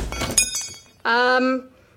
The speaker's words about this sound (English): the door handle just broke off.